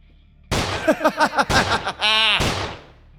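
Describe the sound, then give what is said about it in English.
Three sharp, loud handgun shots, fired into a corpse, ring out about a second apart, with a man's rhythmic laughter bursting in between them, energetic. “Rocco, tired of waiting for Jimmy, took out his own gun and started filling Arachnoid's corpse with more holes”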